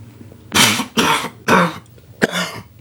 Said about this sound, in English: You okay? Yeah, nah, just getting old. It seems I can't smoke or laugh now without coughing.